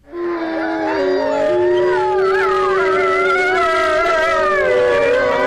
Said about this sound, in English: I like to call this Wolves in Harmony. It's not a group. This is not the song of the summer. This is wolves, actual wolves in harmony.